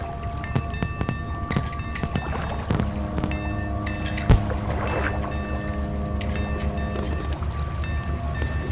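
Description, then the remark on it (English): A yacht's engine drones steadily across the water, a low continuous rumble with humming tones layered over it and a single brief knock partway through. No one speaks. “that's Mona's yacht out there”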